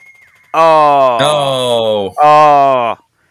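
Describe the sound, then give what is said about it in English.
An alarm goes off with two long, loud, low droning blasts that sound much like a cow's moo, the first about a second and a half, the second shorter, after a faint steady tone. “Alarm. Well, one second.”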